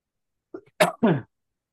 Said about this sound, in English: I'm trying not to cough.